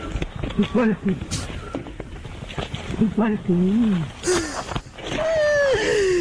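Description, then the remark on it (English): A musk duck, in a recording from decades ago, mimics human speech as if copying someone arguing, seemingly saying "you bloody fool": several garbled, voice-like phrases with wavering, falling pitch over a constant hiss, ending in a longer, steadily descending drawn-out call. “It's called the musk duck. And this recording is actually from decades ago, but it's recently started to surface again.”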